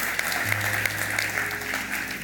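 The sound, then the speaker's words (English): A church audience claps steadily, dense overlapping applause from many hands, with a low hum running underneath. “Yes, you can give the Lord a clap, amen.”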